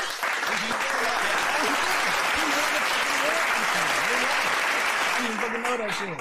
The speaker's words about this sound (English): Give him a round of applause, man.